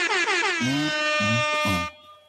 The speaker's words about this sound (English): Air horns. Where are my air horns?